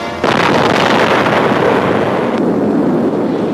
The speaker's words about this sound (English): Strange-looking installations at Runit Island and Iwetok Atoll are ready for the testing of a new U.S. atom bomb, equal to perhaps 10,000 tons of TNT. First, watch the explosion from sea level.